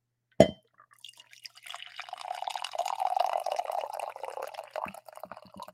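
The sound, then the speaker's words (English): A sharp clink against an XFL mug, then a steady stream of coffee poured from a pot into it for several seconds, its gurgle rising slightly as the cup fills, clear with no talking. “This is prop coffee. I don't even want it. I'm well caffeinated. I got my XFL mug here.”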